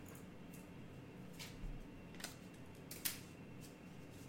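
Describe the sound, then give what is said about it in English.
Quiet, scattered rustles and soft clicks as someone rummages for a piece of paper and sticky notes, spaced irregularly over a faint steady background hum, with no talking. “Let me get a piece of paper here. Get my piece of paper. Let me get my sticky notes.”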